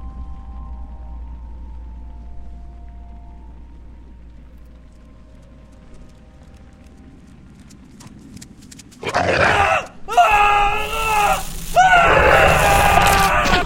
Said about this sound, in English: We woke to screams. What the hell is that? Something that'll attract the sheriff's attention.